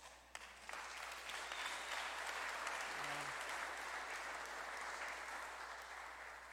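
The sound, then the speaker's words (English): A crowd applauds steadily, dense clapping rising quickly and holding at a strong, even level for several seconds before tapering slightly, with a brief low tone in the middle. “I hope everybody's clapping for Jesus, because I didn't do nothing.”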